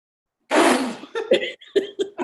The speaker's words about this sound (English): I haven't had to cough for the last 5 minutes, but I was scared to cough because I wanted you to judge me.